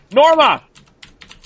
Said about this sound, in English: It's like a machine gun's being fired. Very loud. I can't talk when people's typing like that. I mean, yeah, it throws me off.